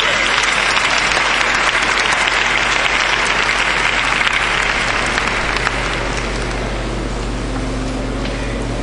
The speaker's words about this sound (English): Come on, clap your hands and give the Lord some praise.